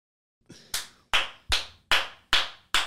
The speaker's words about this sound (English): Everybody clap it up. Everybody sitting behind your screen. Everybody walking on a treadmill. Walking your dog. On the bench press.